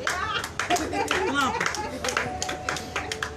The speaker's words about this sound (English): Clap, man. Bless him, clap.